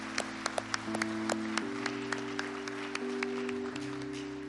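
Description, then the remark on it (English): A church audience applauds for the Lord with scattered, uneven claps after a prayer, while a steady sustained organ or keyboard chord hums underneath throughout, shifting pitch partway through. “Church, would you give the Lord a big round of applause?”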